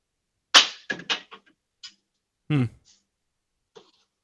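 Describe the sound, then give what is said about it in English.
A drawer full of glass beer bottles, including Yingling and Corona, slides open with a sharp rattle as the bottles clink and knock together in a few quick bursts, followed by a short rough clatter and a faint final tap. “And then this whole drawer is full.”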